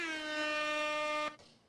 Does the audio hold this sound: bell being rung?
no